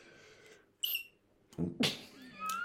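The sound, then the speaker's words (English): Several cat meows in quick succession, some thin and high, others louder and more strained, with no talking. “Just look at all the cats.”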